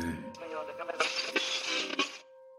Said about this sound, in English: Alan's ears tuned in towards the sound of the radio static, and he noticed the lit-up radio sitting on an end table next to the door.